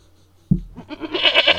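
A goat bleats loudly, one wavering, nasal cry that starts abruptly after a short quiet moment and trembles through its length.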